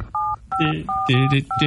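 Touch-tone keypad beeps on an old telephone punched out in a quick melodic sequence, each dual-tone press held briefly, with the pitches shifting to form a little tune.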